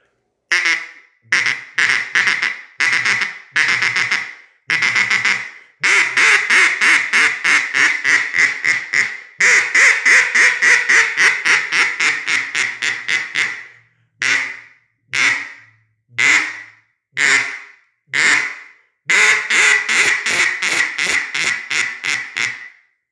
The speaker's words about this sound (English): So I'm going to give you guys a sound file here, kind of let you see what it sounds like, and let you judge for yourself what you think. But here is the Falk's CA11 cane duck call, guys.